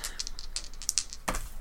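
A different set of dice rattle and clatter in a quick series of sharp clicks, ending with a louder tumble and knock as they land, rolling a 9. No one speaks.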